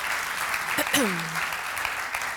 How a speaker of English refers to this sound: Thank you. Can we give a round of applause to... Thanks, guys. Thank you.